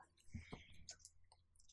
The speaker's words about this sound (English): roll another D4. Oh, God, make me get my dice out.